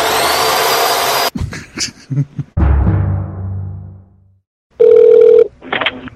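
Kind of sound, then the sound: tool, power drill running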